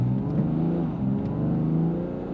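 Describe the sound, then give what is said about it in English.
A squad car engine revs hard and steady, a loud rumble with rising and falling harmonic whine as the car accelerates and speeds off down the road. No voices. “he floored the squad car and sped off down the road.”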